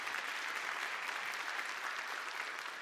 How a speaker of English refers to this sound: First time over 6,000 in any worship experience we've ever had in our church. So we just applaud that. What a great evening it was.